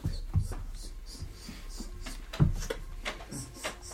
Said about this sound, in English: And I'll go into my bag and rustle some coins and kind of like...